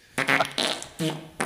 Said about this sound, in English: Oh, that's just perfect. A manatee fart.